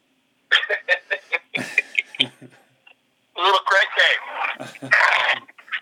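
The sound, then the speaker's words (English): A dog whines and yelps in quick, high-pitched bursts, then lets out longer wavering cries after a short pause; fairly loud, with no other sounds around it. “Is this dog, is it okay?”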